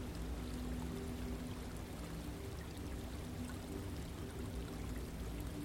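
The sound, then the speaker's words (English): A distant stream trickles and burbles steadily, a soft continuous wash of running water with a low hum underneath and no voices. “The distant trickle of the stream, the odd drill of a woodpecker, the incessant trills of a musical blackbird, all blend into one wonderful and relaxing soundscape,”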